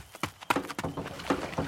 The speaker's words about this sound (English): I'm going to try to jump into the boat the same second she does. Hold on.